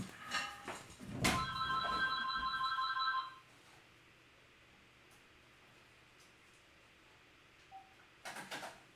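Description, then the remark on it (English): A telephone rings once in a studio in a steady, bright electronic burst lasting about two seconds, after a short clatter of handling noise, then fades to quiet room tone with more rustling at the end. “Oh, someone's calling.”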